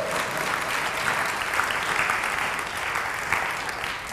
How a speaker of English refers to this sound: I want you guys to give a big round of applause